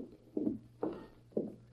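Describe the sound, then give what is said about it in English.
Three hollow hoof clops from horses outside a house, spaced in a slow, slightly uneven walking rhythm, moderately soft over a low steady hum, with no voices. “I see horses outside, so if you want company, I...”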